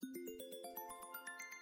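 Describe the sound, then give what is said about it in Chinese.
A mobile phone ringtone for an incoming call from the speaker's husband plays alone: a quick, steadily rising sequence of bright electronic beeps, about a dozen evenly spaced notes climbing in pitch, clear. “是我老公的电话，你别出声啊。”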